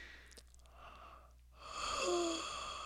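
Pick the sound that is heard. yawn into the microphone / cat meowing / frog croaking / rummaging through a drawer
yawn into the microphone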